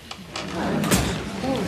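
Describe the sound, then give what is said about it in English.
A chair scrapes and thumps quickly across a hard floor as a man shoots out of his chair in a courtroom, a short rough burst of movement, with muffled voices murmuring underneath. “He shot out of his chair.”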